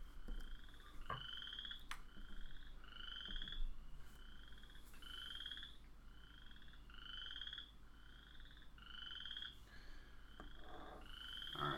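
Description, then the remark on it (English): A Western chorus frog croaks over and over in a steady rhythm, roughly once a second, each call a bright, buzzy chirp against a soft background hiss, with no one talking. “Those nice soothing frog noises. Lo-fi frog noises.”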